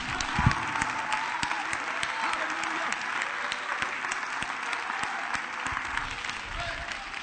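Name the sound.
audience clapping hands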